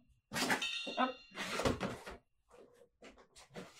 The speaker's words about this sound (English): I'm getting out the gong, people. Here it comes.